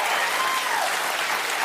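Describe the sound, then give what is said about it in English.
Steady, dense audience applause: many hands clapping at once in a continuous wash of noise that stays loud and even for the whole stretch, with no voices standing out. “This is the real thing. Of applause.”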